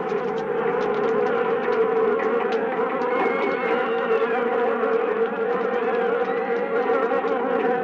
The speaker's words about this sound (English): On September 16th, 1965, however, a swarm of killer bees attacked in downtown Rio. In their frenzy, they bombarded anything that moved.